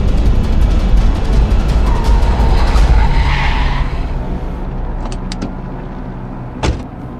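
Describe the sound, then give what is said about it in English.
Gordon's car, with his partner Sarah Essen, brakes hard and swerves to avoid hitting a woman, its tires screeching in a long skid over a loud engine roar, then the noise fades down with a few sharp clicks and a thud near the end. “Gordon slams the brakes and tries to swerve out of the way, but he's about to hit the woman when Batman rushes in and saves her.”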